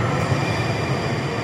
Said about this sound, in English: Train approaching. Please stand clear at that location.